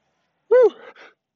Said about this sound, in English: Wait, about this sneeze.